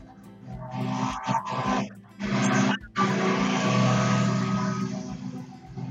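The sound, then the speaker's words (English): A loud, steady engine drone with a buzzing, lawnmower-like hum runs throughout, its tone dipping briefly a couple of times before carrying on unbroken. “Hi, sorry, this just sounded like there was a lawnmower or something. It sounds like you're in a hangar and someone's fired up the plane.”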